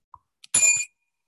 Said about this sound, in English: Oh, so now he's so happy when he dings the bell, his hand actually goes up in the air over his head. and his shoulders raise up in glee.